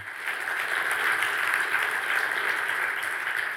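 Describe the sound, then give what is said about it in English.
A crowd claps steadily, a dense wash of many hands with no individual claps standing out, holding at a fairly loud, even level throughout. “Come on, how about clapping for some courage?”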